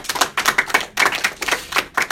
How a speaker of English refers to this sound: Clap for yourselves.